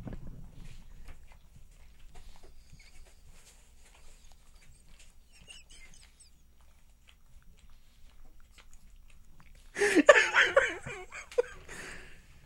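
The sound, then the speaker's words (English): A dog licking and slurping at itself: faint, wet smacking and clicking sounds repeating irregularly, followed near the end by a brief louder burst of voice or laughter. “you get the sound of dogs pleasuring themselves in the most not even intense that, way. Just slurping away.”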